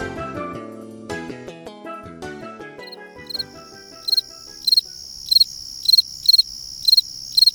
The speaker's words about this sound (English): We leave you this week with a distinctive sound of the season, the fall field cricket, Grillus pennsylvanicus. Fall field crickets hatch in the spring and continue to sing till the frost kills them.